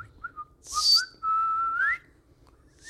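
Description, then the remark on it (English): A person whistles a few short tones, then holds a long, steady whistle that slides upward at the end. Brief breathy hisses mark the breaths between notes, and no one speaks. “I can whistle three different ways.”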